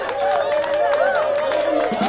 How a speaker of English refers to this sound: And here she is. Give her a big hand, everybody.